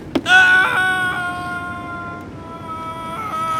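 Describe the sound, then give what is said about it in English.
A single long, loud, high-pitched yell that starts abruptly and holds for several seconds, wavering in pitch with small steps, with no speech around it. “You know, it all starts with a good yell.”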